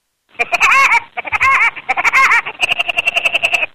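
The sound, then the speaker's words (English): A cartoon woodpecker's signature laugh: three loud, squawky, warbling bursts followed by a rapid staccato run of high cackles. It is brash and heard alone, with no talking. “Maybe I can get used to hearing this once again.”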